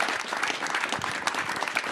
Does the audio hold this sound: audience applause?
yes